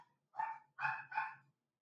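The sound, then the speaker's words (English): A dog barks three times in quick succession, fairly loud, each bark short and sharp with a brief pause between; no one is talking. “What's your dog's name?”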